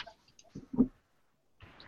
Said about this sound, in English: Now, dice, I need to hear it. Okay.